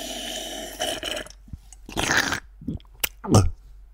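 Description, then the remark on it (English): Close-up wet drinking and slurping noises right against the microphone, a few uneven gulps and smacky bursts with short pauses between them, loud and intimate with no talking. “What does it sound if I drink something you like that?”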